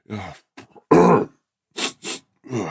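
A person imitates the raspy throat clearing of someone with a cold, followed by a couple of short, harsh coughs, a series of loud bursts separated by brief pauses, with no words spoken.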